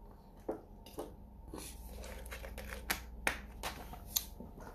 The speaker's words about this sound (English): I'm taking a swig of this water.